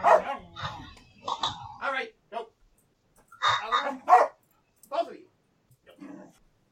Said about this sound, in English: I gotta break up a dog fight.